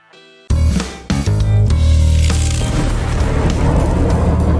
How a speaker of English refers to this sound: When you hear the storm, get ready for more. News, that is, just the quick stuff.